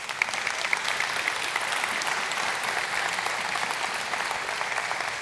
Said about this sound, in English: That's worth an applause.